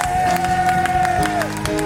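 An audience applauds with a steady wash of clapping throughout, while sustained keyboard-like chords hold underneath the claps.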